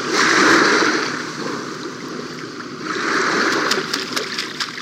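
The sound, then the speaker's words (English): Continuous splashing and sloshing of water as a herring gull bathes on a seawall on Long Island Sound, ducking, tossing water on its back and working its wings and tail, with a burst of quick, sharp flicks and spatters near the end. No voices. “Producer Mark Seth Lender watched as this herring gull ducked, tossed water on its back, and then worked its wings and tail like a hand pump, forcing the water through his feathers.”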